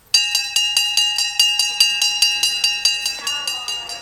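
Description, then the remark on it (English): An old fire truck bell, once mounted on the front of a fire truck before sirens were used, clangs in a steady, rapid rhythm, about a dozen bright metallic strikes in a row, each ringing tone overlapping the next, with no voices. “Back in the olden days when Pastor Brian was a little boy, it was on the front of a fire truck.”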